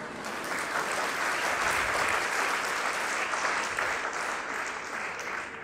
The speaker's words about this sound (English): You are clapping for your own programming.